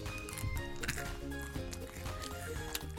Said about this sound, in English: And while I'm talking about the wonderful M&M's, let's revisit how wonderful M&M's are by their crunch. Ready, audience?